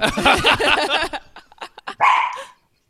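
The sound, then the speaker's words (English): A dog barks loudly: a rapid, continuous burst of barking, then a few short, choppy yaps, and a final drawn-out bark before silence. “You're a dog also? Do you have a dog?”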